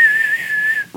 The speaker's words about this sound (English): I'm doing the whistling a theme song. I'm doing the whistling. I can't whistle. Your mic cuts out your whistling.